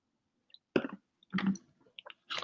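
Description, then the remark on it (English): Someone drinks water: a few wet gulps and swallowing sounds in short irregular bursts, with small clicks between them, fairly quiet and with no talking. “I was drinking the water.”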